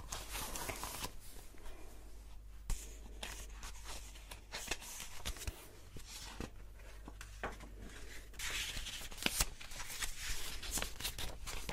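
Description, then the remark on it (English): Crisp paper rustling and handling as a new sheet of paper is fetched, lasting several seconds, with soft movement and occasional light taps over a steady low background hum; no one speaks. “I'm going to get a new piece of paper and then we will begin, okay?”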